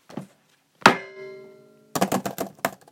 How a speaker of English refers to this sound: No, seriously, that is me typing in my fucking password.